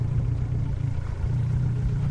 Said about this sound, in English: loading up his boat, a rickety plywood tub powered by a potent 115 horsepower outboard motor.